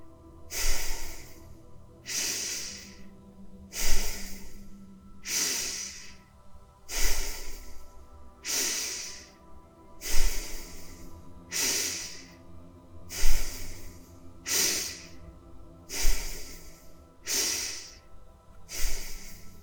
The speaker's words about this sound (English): No pause between the inhale and the exhale. Breathing in deeply and with force through your nose.